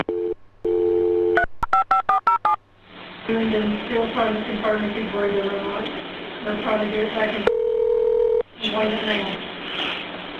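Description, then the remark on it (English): A phone line tone gives way to a quick burst of touch-tone keypad beeps as a Walker County 911 operator dials to call a person of interest back. Muffled voices follow over the line, broken by a short steady ring-like tone. “Once again, this is the 911 operator calling the person of interest back.”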